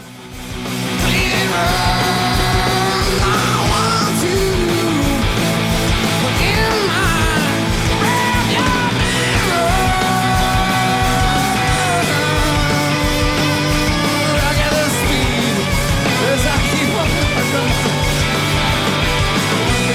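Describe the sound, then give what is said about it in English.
Loud, dense rock music plays nonstop as a song ends, a full band driving hard while high, bending, screeching guitar lines wail over the top, with a raw, maniacal yelling voice woven into the roar. “you just get a maniacal … to finish this off, and in …, you have that screech to Mike's guitar to finish it off”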